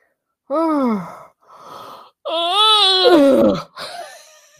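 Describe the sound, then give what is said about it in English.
A person yawns loudly: a voiced, wavering groan, a breathy pause, then a longer stretched yawn that slides down in pitch and trails off into an airy exhale. “yawning, I know.”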